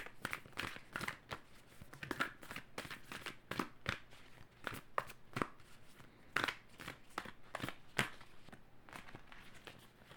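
A deck of Moonology cards is shuffled during a card reading, with a dense run of crisp papery clicks and riffles in uneven bursts over about ten seconds, fairly quiet and with no one speaking.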